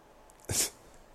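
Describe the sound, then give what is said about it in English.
A single short, sharp sneeze-like snort from a female dog, a brief breathy burst that stands out clearly against a quiet background with no talking. “Your dog's just weighing in on the conversation.”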